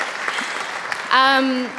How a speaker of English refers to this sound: Yeah, give a round of applause for sure.